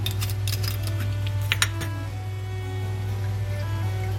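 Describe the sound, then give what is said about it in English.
Wine, a Deep Woods Margaret River Semillon Sauvignon Blanc, is tipped into a pan that had fried onions, and a metal utensil scrapes off the brown bits. The pan sizzles steadily while the utensil scrapes and clinks in a quick cluster of strokes early on, then the hiss continues over a constant low hum. “And then this pan, which had the onions in, I'm just going to tip a bit of wine into this and scrape all the brown bits off.”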